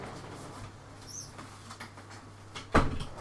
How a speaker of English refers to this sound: I'm just going to quickly close my door. I'll be back in one sec.